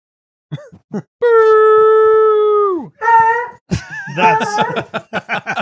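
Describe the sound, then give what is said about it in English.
A dog named Elwood lets out a long, loud, sustained howl that falls off at the end, followed by a few shorter howling and yipping bursts. “This is my dog.”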